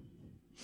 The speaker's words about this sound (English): I thought I had to sneeze. Bless you.